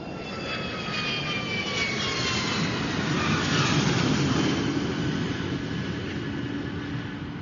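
A steady, continuous engine drone fills the cabin of an airplane in flight to England, a broad roar laced with faint whining tones that slowly sink in pitch, with no voices.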